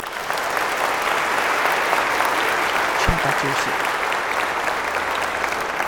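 An audience applauds steadily for several seconds for a child who has just shown everyone a crucifix, a dense, even wash of many hands clapping at once, with a faint voice briefly audible partway through.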